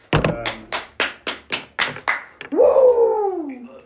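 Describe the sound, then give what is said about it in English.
A person claps their hands eight times in a quick, steady rhythm, fairly loud, then lets out a drawn-out yell that slides downward in pitch. “I don't know why the guy who's not good at fantasy is clapping and yelling over there, but I'll bounce back.”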